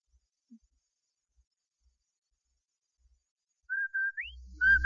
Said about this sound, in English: Did I hear what? That whistle. That's the Rinso White whistle.